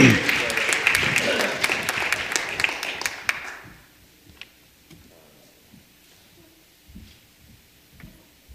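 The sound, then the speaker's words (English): A church audience applauds as a clap offering to the Lord, with dense, steady clapping for about three and a half seconds, then it cuts off abruptly, leaving quiet with a few faint scattered sounds. “Give the Lord a clap offering right there.”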